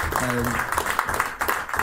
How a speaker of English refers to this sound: So round of applause for the club for that, please.